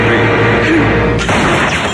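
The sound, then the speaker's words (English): A sharp gunshot cracks out partway through, cutting across a dense, loud wash of rumbling noise that fills the whole stretch, with no clear talking. “I heard a gunshot!”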